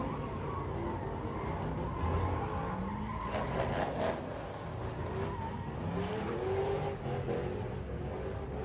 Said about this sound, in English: Mad people just blocking off a major intersection where people just can't go anywhere. And they were just doing donuts and shit.